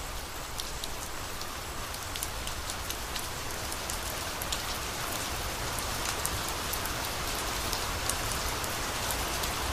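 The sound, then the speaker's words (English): Steady rain falls, a dense continuous hiss with many sharp droplet pats striking a surface, holding an even loudness throughout with no voices. “Just open the window, listen to the sea, listen to the rain, listen to the wind.”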